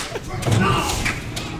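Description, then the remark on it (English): A door slams or is smashed: a heavy thud with a rough crashing rattle that lingers for about a second over a dense, noisy background; the door was donated by the House of Igor. “That door, of course, donated by the House of Igor.”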